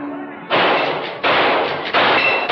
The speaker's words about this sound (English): The ducks didn't have a chance. Nice shooting, Your Highness.